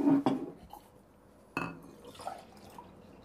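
Iced tea is poured into a glass, with a couple of sharp clinks and short splashing bursts separated by quiet pauses. No one speaks.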